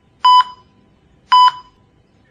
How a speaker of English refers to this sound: slowly starts to come around to the sound of beeping.